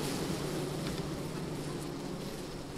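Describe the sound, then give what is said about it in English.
A dense, steady drone of many honeybees buzzing inside an open hive, recorded with the microphone right next to the hive, a continuous hum filling the whole stretch with no pauses and no voices. “I'm going to put my microphone right next to the hive so you can all hear these bees.”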